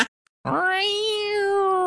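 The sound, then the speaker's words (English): A single long, drawn-out meow rings out clearly after a brief silence, holding a steady, slightly nasal tone for over a second. “Meow.”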